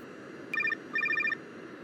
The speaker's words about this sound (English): They don't even seem to notice the light turbulence when hitting an air pocket, but they do notice the ringing of Reason's cell.